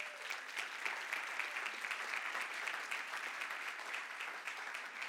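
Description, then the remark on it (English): An audience claps steadily for two people as they come up, a dense patter of many hands at an even volume for about five seconds, with no voices rising above it. “Okay, we'll give them a round of applause while they come up.”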